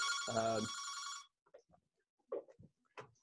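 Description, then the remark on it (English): A telephone rings once with a loud, buzzy electronic trill lasting about a second, then stops, followed by faint scattered speech sounds in the background. “Sorry, I got phones ringing here and everything.”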